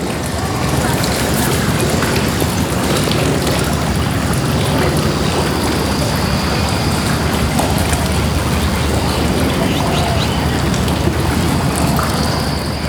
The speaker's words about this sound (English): I can hear various sounds of nature in this place, such as the sound of river lapping the bank, the sound of birds and seagull chirping, and even the sound of a passing ship.